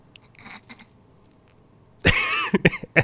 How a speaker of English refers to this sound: Sorry, I had to blow my nose.